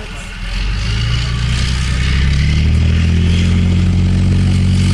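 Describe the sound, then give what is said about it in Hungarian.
A tracked vehicle's engine drones loudly and steadily as the vehicle turns, its low rumble building slightly, while the tracks clatter continuously underneath in a dense rattling rhythm. “Nem, ez a lánctalpcsörgés, itt fordul.”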